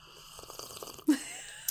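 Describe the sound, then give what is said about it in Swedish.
Someone slurps a drink: a series of soft, breathy sips followed by one louder, sharper slurp near the end, with no talking. “Jag måste bara ta en slurp.”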